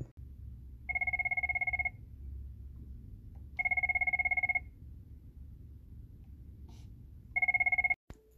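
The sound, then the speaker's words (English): A telephone at the Safe Horizon Family Court office rings three times in steady, evenly spaced bursts, each a loud two-tone electronic trill lasting about a second, over a low background hum with no talking. “And that is how my day begins, with a doorbell or phone ringing constantly.”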